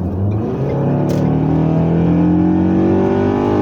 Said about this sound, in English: Driving behind these dumb fucking cars.